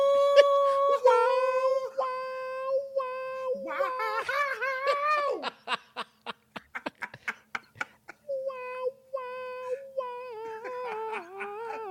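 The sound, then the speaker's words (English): A dog howls in long, wavering, high-pitched tones, breaks into a quick run of sharp barks, then slides back into a drawn-out, falling howl. “Never seen a dog bark like this.”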